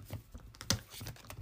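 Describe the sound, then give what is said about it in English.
Cards being shuffled, a quiet run of quick papery clicks and flutters with one sharper snap midway, no voices over it. “I'm shuffling them for a second.”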